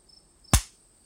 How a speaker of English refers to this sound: Ouch. Oh, that hurt. Why did you slap yourself, Mommy?